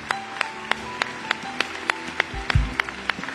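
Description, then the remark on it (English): An audience claps in praise of God after a prayer, sharp hand claps in a steady rhythmic beat over sustained keyboard-like tones, with a brief low thump partway through. “And the church said, in Jesus' name, would you give that Lord, that God, that King a hand clap of praise that makes this place ring?”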